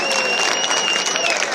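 A stadium crowd at a baseball game applauds a pitcher who pitched a good game, dense clapping at an even, sustained loudness throughout, with faint voices mixed into the wash and a thin high tone running across it.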